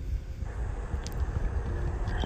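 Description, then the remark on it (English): A car cruising by, heard as a steady, loud low rumble with a rough, wind-like hiss over it for a couple of seconds, no voices. “So, did you hear my car?”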